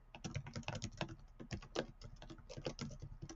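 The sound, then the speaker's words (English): Rapid, steady keystrokes clatter on a computer keyboard, a dense run of clicks with brief uneven pauses and no voices. “let's go ahead and use, I am typing here.”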